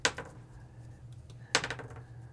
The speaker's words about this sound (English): That's a lot of dice rolling.